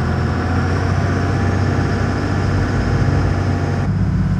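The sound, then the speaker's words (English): A loud engine opens up to go faster on a tour passing Fort Point, a deep, steady rumble with a droning hum layered over it, continuing unbroken for several seconds with no voices. “There you are, there's the engine opening up.”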